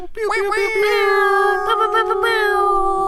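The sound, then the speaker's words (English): A single sustained air horn blast rises briefly, then holds a steady, buzzy, mid-pitched tone rich in harmonics for about three seconds, sounding thin and somewhat deflated, with no talking over it. “That's probably the saddest air horns ever.”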